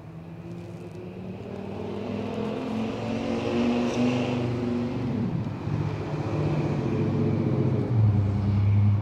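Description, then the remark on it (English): A heavy truck rumbles past outdoors during a gathering on a lawn, its low engine drone swelling and shifting pitch as it goes by, loud and steady for several seconds with no voices. “I thought I had something good to say, but then the truck distracted me.”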